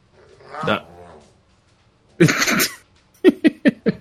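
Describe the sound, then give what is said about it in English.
A dog named Avon growls and grumbles: a drawn-out throaty snarl, then a harsh burst, then four quick, sharp barks in a row. “Can you guys hear that growling?”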